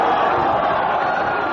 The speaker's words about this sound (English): So as we hear that Douglas announces his decision to leave, shoots in the ECW management. The crowd, sarcastically to some extent, applaud his decision and actually start quite comically drowning him out with woo chants.